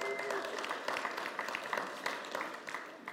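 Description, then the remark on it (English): A crowd applauds steadily, many hands clapping in a dense, continuous patter at moderate loudness for a few seconds. “Everyone give Chris a round of applause.”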